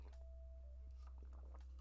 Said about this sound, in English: excuse me, let me take a sip of that water. Ooh, that was bad.